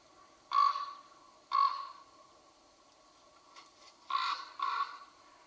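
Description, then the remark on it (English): A raven calls four times with harsh, throaty croaks: two spaced about a second apart, a short pause, then a quicker pair, heard clearly on their own over a faint background. “Are there any scenes that come into your mind when you hear the sound of a raven?”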